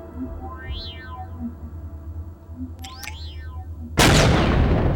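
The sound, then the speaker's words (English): A single sharp gunshot bursts out loudly near the end, during a video game's end-of-level summary, its noisy crack lingering, after a stretch of soft, sweeping electronic chirps and a low hum. “So it goes to the end summary of the level and you hear a gunshot.”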